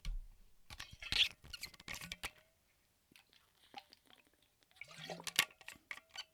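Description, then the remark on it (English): Wet mouth sounds as someone takes a sip of water, with small gulps and lip smacks, a short pause, then another burst of swallowing and clicking. No talking. “Fancy Lad has me reaching for some water.”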